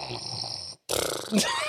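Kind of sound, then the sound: vocal imitation, voice imitating snoring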